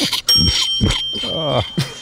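A pig named Arnold, in a bedroom, grunts several times in short, uneven bursts, then lets out a longer, wavering squeal-like grunt before a final snort; fairly loud, with no one talking.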